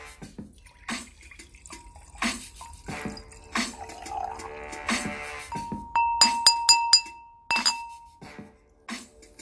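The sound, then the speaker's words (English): Wine of about 13.5% alcohol by volume pours into a glass, a steady gurgling stream with rising pitch, surrounded by sharp glassy clinks and taps, with no talking. “It's a very good wine for me, but let me pour me a glass.”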